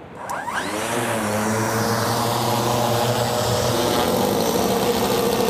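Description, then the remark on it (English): A custom-built, AI-powered fixed-wing drone with a 5-metre wingspan, made to track Maui dolphins, takes off on a trial flight; its propeller engine buzzes steady and loud with a slight shift in pitch as it accelerates and climbs; no one speaks. “So the drone we've got, it's a 5 metre wingspan drone.”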